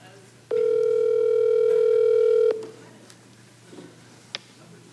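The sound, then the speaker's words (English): A phone line rings once with a steady electronic tone lasting about two seconds, loud, then drops off to quiet background with a few faint small noises, as a call is placed to the speaker's mother to wish her Happy Mother's Day. “Let me see if I can get her on the phone.”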